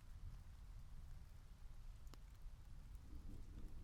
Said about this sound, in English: And as the rain stopped, or at least paused, I could hear the distinct individual sounds of drops falling from leaf to leaf.